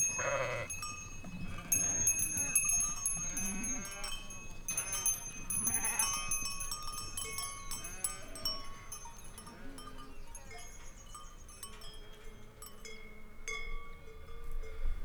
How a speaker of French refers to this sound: Comme une sorte de rêverie éveillée, prolongée par le tintement des cloches, continuant loin, malgré la disparition de ce bourdon.